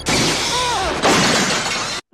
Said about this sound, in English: Saunders' death is pretty brutal. You know, It is, yeah. the glass doors closing on him.